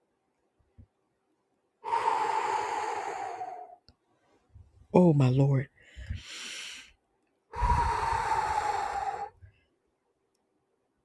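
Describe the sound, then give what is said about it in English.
Two long, heavy breaths from a man rasp loudly, each lasting a couple of seconds, with a short spoken exclamation in between them. “My God, he's breathing.”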